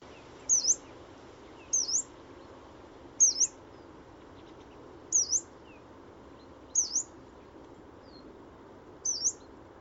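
Yellow-browed warbler calls, six high, thin upslurred notes repeated at fairly even intervals of about one and a half seconds, clear over a soft background hiss.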